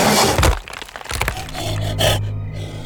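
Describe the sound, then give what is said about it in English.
A galloping beast slams into the face of a wooden hunting blind with a loud splintering crack, then creaking, crunching wood and scattered debris settle over a few seconds. “As quick as he realized what the noise was, the second beast slammed into the blind's face.”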